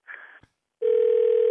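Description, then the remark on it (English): A brief click and rustle, a short pause, then a steady, loud telephone dial tone hums continuously as a call back to someone is about to be placed. No one speaks. “Let me call him back. Here we go.”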